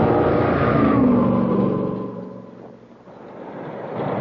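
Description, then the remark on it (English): An Alfa Romeo sports car with an aluminum engine and fuel injection revs hard and accelerates, its rising pitch sweeping upward before easing back and building again, loud with no voices. “A machine whose aluminum engine and fuel injection system Motor Trend magazine reports can squeeze 29 miles out of a gallon.”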